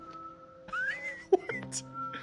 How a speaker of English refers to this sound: I started whistling and walking towards my friend.